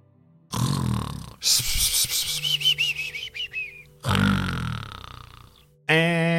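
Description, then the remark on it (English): A person loudly fakes snoring: a rough, rattling inhale, then a long whistling exhale with wavering high pitches, another gravelly snore, and a short voiced hum at the end. “I almost forgot that I wasn't streaming and I almost didn't snore.”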